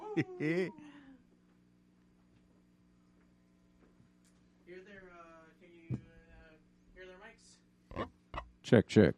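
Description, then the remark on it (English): A person makes pig-like oinking and squealing noises in several short, nasal bursts, separated by pauses, over a steady low electrical hum. “Yeah, they're pigs. On. We're all pigs.”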